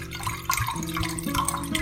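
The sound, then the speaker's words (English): Water pours steadily into a glass to mix an Aurora Borealis drink with vodka, a continuous trickling stream whose pitch climbs as the drink fills, with no one speaking. “Let's add a little bit of water. And this much vodka.”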